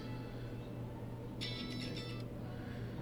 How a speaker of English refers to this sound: Phone calls in the middle of the podcast, don't these people here, don't they know our schedule?